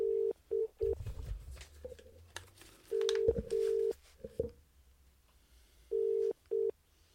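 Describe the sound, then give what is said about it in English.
A telephone call being placed through a Zoom LiveTrack L8 mixer to test it: short dialing beeps, then a steady ringback tone pulsing in clear double bursts with pauses between, fairly loud, over faint handling noise and no talking. “So what I'm going to do now is make a phone call and see how well this works.”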